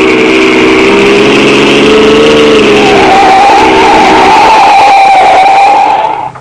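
A loud car engine roars, its pitch climbing steadily as it accelerates hard in pursuit of another car, a sustained revving whine with no talking.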